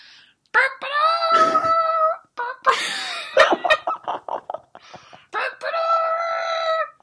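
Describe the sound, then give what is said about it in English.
Two drawn-out, loud rooster crows ring out, separated by a burst of choppy squawking and clucking-like sounds in the middle. “Wow, is there a goose in here? Or was no, that it's just... a freaking rooster.”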